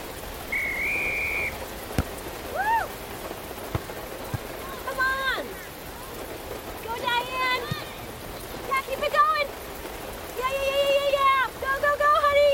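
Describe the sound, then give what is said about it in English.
Steady rain hisses throughout at an outdoor ball game, with a sharp whistle near the start and voices calling and cheering a losing team over the downpour. “If you love them enough to drive an hour to cheer them on as they get beat 11 to nothing in the rain, then surely you'll check”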